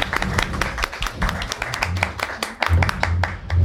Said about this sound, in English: I want to thank the resort for letting us use this space and for the great hospitality. Appreciate it. Round of applause, definitely.